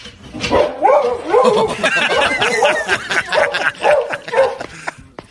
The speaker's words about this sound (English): It's a dog watching horse racing.